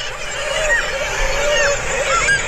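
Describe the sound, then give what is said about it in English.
A dense chorus of seabird calls from a busy colony, many birds squawking and crying over one another in a steady, loud wash with no pauses, and no voices. “Cue the seabirds, please.”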